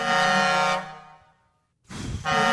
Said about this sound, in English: Were you guys doing any truck horns?